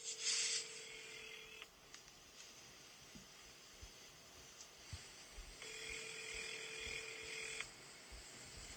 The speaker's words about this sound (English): The phone's ringing. No, that's better. Still ringing. I know you're ringing.